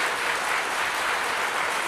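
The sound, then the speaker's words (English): An audience at a worship service applauding in praise of God, a dense, steady wash of many hands clapping at a constant loudness for the whole stretch, with no voices breaking through. “We always applaud for our King, for he is marvelous.”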